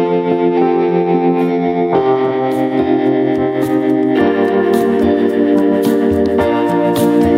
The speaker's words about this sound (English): Let's play some more music. Sure. Yep. All right, let's play his single